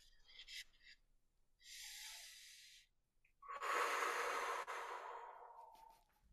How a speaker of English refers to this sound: Lateral breathing, brother. Dude. Expansive breathing. That's it. That's the number one thing you need. You need to be able to breathe out in all directions.